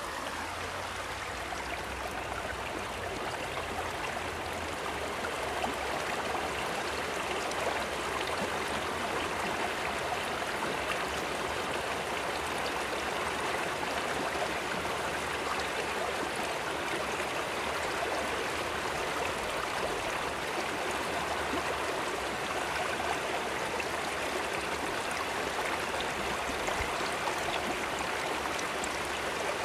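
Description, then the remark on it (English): A steady, continuous rush of flowing stream water, broad and even from start to finish with no pauses, moderately loud, with no voices present. “Get comfortable and just let the sound of the water wash over you.”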